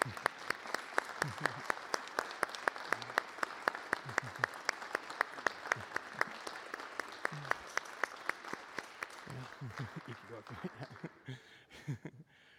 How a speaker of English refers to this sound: Let's thank Kristen one more time with a round of applause.